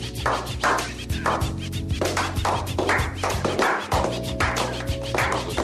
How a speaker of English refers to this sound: What is that? It sounds like people are playing ping pong in the back there. What is that? What was that? I don't know what that was. It's supposed to be a slow clap. Oh, it was a slow clap.